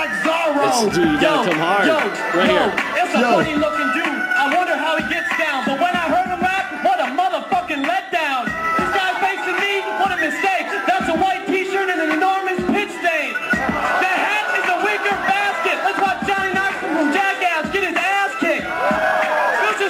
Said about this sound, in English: You hear that? So it's the other guy. This is 2003. So they're booing him already.